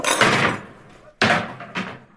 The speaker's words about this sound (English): And he stands up, knocking the chair over.